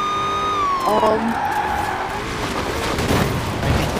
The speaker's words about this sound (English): Well, I just crashed my car so hard.